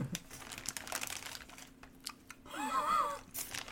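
Thin rolling paper crinkles and rustles in quick, irregular bursts, followed by a short wet licking of the paper near the end. No one speaks.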